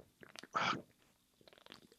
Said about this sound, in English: Ooh, that is a big gulp. Ooh, that is a weird thing. It's fruity. Sugar? It says zero sugar. Oh, fair. But it's weird because it's kind of sweet, but also sour at the same time.